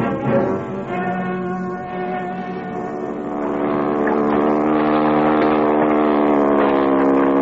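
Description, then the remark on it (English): A motorboat engine hums steadily with a rich, droning tone, growing louder about halfway through. No voices can be heard over it. “Can we get a boat and go over to Craven's Point?”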